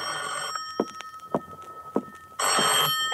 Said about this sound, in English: At 9:45 that night, I was in my apartment waiting for the promised call from John Doe. At 10:05, my phone rang.